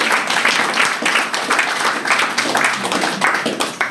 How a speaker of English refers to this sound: I'm not sure I deserve applause for it because I know each and every one of you has gone through your own complicated and challenging path to arrive at sobriety and stay there.